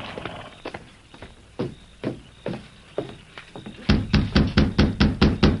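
A few scattered, soft thuds give way to a brisk run of about eight firm knocks on a wooden door, evenly spaced and loud: the Lone Ranger, having dismounted, knocks at the door of Bell Webster's rundown ranch.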